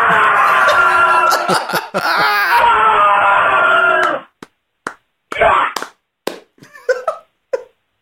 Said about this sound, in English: Wow. That was a beautiful scream. That was, and it sounded like convincing. I would bet if anyone heard it nearby, they probably did contact emergency services.